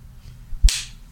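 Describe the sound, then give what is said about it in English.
A single sharp crack from a small leather slapper, fairly loud, with a quick hissing tail that fades over a faint low background rumble. “That ain't a whip. That's a slapper.”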